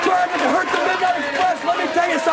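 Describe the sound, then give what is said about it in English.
A loud, dense arena crowd roars and chatters continuously, a wall of overlapping voices that buries any single speaker so nothing can be made out. “Well, the crowd's too into it. You can't make it out.”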